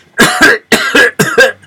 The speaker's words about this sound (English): Are you catching a cold? No. I just had to clear my throat.